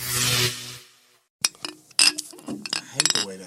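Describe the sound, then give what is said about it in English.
Glasses clink together in a toast, a generated clink sound effect: a bright ringing burst at first, then a quick, uneven run of sharp clinks with short chiming tails, over faint background murmur. “I'm about to get a I'm about to get a generated clink sound for this one.”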